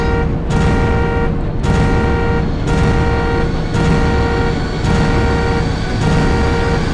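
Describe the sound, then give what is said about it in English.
A car alarm outside blares continuously with a harsh, buzzing tone that pulses in roughly one-second bursts, loud and steady throughout, with no voices. “Somebody's car alarm was on outside.”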